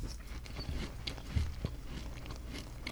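Crunchy chewing of instant coffee crystals, a steady run of gritty, irregular crackles and crunches for a few seconds with no one talking.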